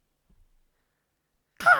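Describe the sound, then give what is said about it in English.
Nearly two seconds of near silence, then a sudden loud, raspy voiced squawk at the very end: a person mimicking a crow's caw, cut off abruptly. “I need to make a noise, like a crow noise or something.”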